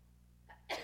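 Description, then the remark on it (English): A single sneeze: a brief breathy intake followed by a sharp, hissing burst at the very end, fairly quiet, over a low steady background hum. “Bless you.”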